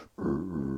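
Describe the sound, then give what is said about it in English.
A person lets out a short, low, growling roar in imitation of a lion, starting abruptly after a brief silence and held loudly and steadily for just over half a second. “I don't know why that's a lion noise.”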